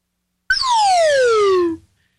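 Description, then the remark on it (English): A slide whistle plays one smooth downward glide, starting high and bright and sinking steadily lower over about a second, loud and on its own with no voices. “And the slide whistle is so on key.”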